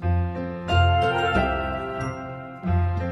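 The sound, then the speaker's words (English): Christmas bells chime in bright, overlapping peals, with sustained tonal rings and a deep low hum underneath; strikes swell at intervals, loud and resonant throughout with no talking. “The Christmas bells are ringing”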